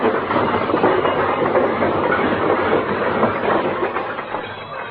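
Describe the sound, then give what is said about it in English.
A long, loud avalanche of junk crashing out of Fibber McGee's closet as he opens the closet door: continuous rattling, banging clatter for about five seconds that thins slightly at the end, with no voices. “When Fibber rushes to open that closet door, look out!”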